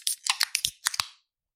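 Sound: beer being cracked open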